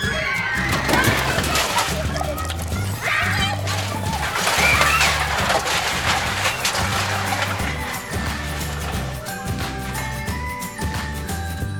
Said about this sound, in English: Step 3. Pour gasoline on your victim. Come on, kids. Everybody grab a gas can.